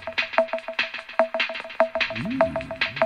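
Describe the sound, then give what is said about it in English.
Instrumental bed music played while guests are greeted on the Casimir Engine Show Christmas special, with a steady, punchy electronic beat and a repeating bright tone; a gliding bass line joins partway through. No one speaks over it. “We'd better put a bit of bed music on.”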